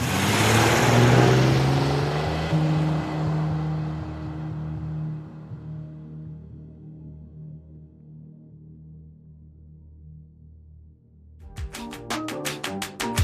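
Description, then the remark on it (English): A loud police car engine is started and rumbles and revs, then fades steadily as two vehicles drive off in separate directions, followed by a short burst of rapid clicking at the end. “the 2 cops get into the car, start it. And Cletus, you look out the window as the 2 vehicles head their separate ways”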